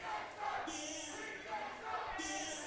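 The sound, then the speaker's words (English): A large wrestling crowd at Candy Bowl yells together in a loud, rhythmic chant of "Pink Gang sucks", voices rising and falling in repeated bursts with a dense roar throughout. “Wow, listen to the crowd yelling, Pink Gang sucks.”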